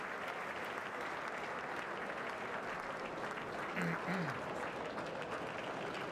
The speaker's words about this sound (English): What's that weird-ass fucking clap? What is that?